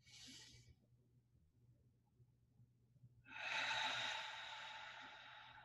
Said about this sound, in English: Here's a little exercise just to understand frequency is, if you were to change your breathing to 4 seconds in, 4 seconds out